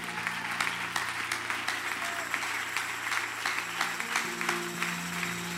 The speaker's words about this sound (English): Let's clap our hands to the Lord one more time.